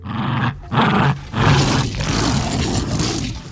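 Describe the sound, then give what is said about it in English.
A Tyrannosaurus roar sound effect made using sounds of a Jack Russell Terrier playing with a rope toy: several loud, growling bursts with rough, low rumbling tones and brief gaps, building into a sustained raspy roar. “Gary watched his Jack Russell Terrier playing with a rope toy and saw the similarity of the T-Rex grabbing and shaking other dinosaurs and lawyers to death.”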